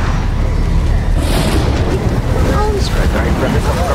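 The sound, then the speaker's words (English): A storm rumbles loudly and steadily in a scene from the TV series Lone Star, a deep, continuous roar with gusty wind noise filling the whole stretch, while faint indistinct voices seem to surface beneath it. “Oh, well, that storm you hear brewing at the end of that clip, by the way, that'll put up a big challenge for the 126.”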